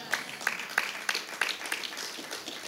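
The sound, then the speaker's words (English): Sparse, half-hearted applause from an audience: a handful of scattered claps ringing out over a soft wash of quieter clapping, thin and fading after a couple of seconds. “That was a weak clap, but I'm going to keep going.”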